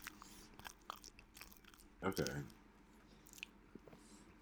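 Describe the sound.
Crunchy chewing and biting sounds, a series of sharp, crackly bites and munches with one louder burst in the middle, while a voice briefly speaks.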